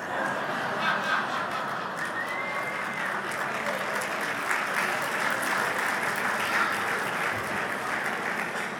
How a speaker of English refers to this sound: I'm sure wherever he is, he appreciates that applause.